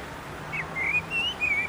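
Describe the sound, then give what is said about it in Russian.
A sparrow chirps in a short run of about four high, thin, whistle-like notes, each sliding slightly in pitch, over a steady low background hiss. “Классно чирикаешь.”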